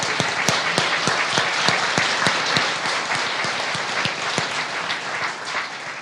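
A crowd applauds steadily for about six seconds, a dense wash of clapping with some sharper individual claps standing out, holding a fairly even loudness throughout.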